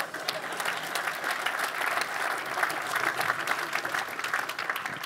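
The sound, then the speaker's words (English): An audience claps for audience members who stood up, a dense crackle of many hands that holds at an even, fairly loud level for about five seconds without building or fading. “Let's clap it up for these pioneers.”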